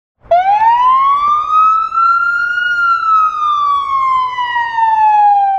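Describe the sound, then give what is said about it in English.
A fire truck siren wails loudly and continuously, its tone sliding slowly upward then gradually falling again, with no voices present. “A fire truck siren.”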